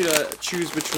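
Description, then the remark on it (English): A crinkly Nacho Cheese Doritos bag held up to the microphone rustles in bright, papery bursts throughout, partly buried under a person talking steadily over it. “Should I hold the crinkle of the nacho cheese closer up to the microphone?”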